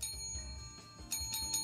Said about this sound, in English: The true intonation of the bell. This is an actual call bell. I'm sure it's just like for fun and games, but it really like works.